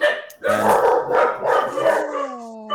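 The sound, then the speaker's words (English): Three dogs bark excitedly at someone at the door, the gardener, in quick overlapping bursts, loud, ending in a rising howl-like whine, with no pauses between barks. “Somebody's at the door. Isn't that exciting? Yeah, how many dogs do you have? We have three.”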